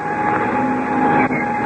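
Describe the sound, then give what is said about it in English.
An airplane engine being started with the starter from the front cockpit, running with a loud, steady mechanical drone and a low hum, holding an even level throughout with only a brief dip near the end; no voices. “Well, I'll jump into the front cockpit and get the engine started.”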